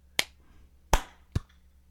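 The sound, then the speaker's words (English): Three sharp hand claps, as a group tries to clap all at the same time to sync their recording, land at uneven intervals rather than together, each a crisp, loud burst over a faint steady low hum, with no talking. “We're going to do a big clap all at the same time.”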